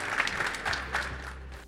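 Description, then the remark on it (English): An audience applauds a panel at CES 2023 in a dense, steady patter of clapping with a few louder bursts, fading slightly toward the end over a low hum. “How about a quick round of applause for our fantastic panel?”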